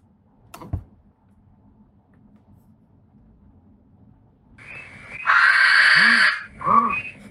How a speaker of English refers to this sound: So now I'm going to play the barn owl sound.